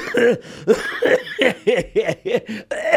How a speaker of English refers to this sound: Now, why are you laughing and coughing?